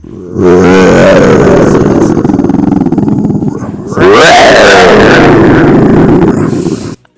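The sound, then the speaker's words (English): A human voice imitates an animal growl, processed with a ping-pong delay effect: two long, loud, raspy low-pitched bursts, the second rising sharply at its start, with no talking alongside. “See, that sounds nothing like the growl. It's just terrible. You got to make it believable.”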